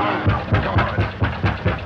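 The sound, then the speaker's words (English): Heavy knocking on a door in the 1931 film The Old Dark House, roughly eight loud, evenly spaced thuds in quick succession, each with a deep, booming low end. No voices are heard. “Knock again, louder.”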